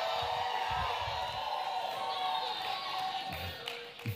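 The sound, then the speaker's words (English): A crowd cheers and claps steadily for the teams, the Golden Lions and the Blue Eagles: a dense wash of voices and applause with a few higher shouts rising out of it, holding strong for several seconds before easing slightly. “Give our teams a hand. Go ahead and cheer for them.”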